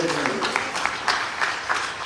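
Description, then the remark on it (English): An audience at a church service applauds, a steady wash of many hands clapping at once with a few sharper claps poking through, holding at an even level for about two seconds. “Let an applause to you.”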